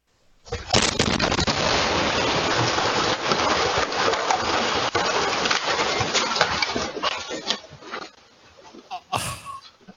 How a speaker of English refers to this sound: So here's a Ring cam footage of the explosion. It happens very quickly here.